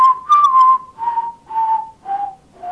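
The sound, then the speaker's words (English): Someone whistles a short descending melody from a theme song, five sustained notes in a steady rhythm, each note sliding slightly lower than the last, clear with no voices. “Oh my God, that theme song.”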